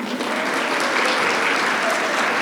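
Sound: audience applause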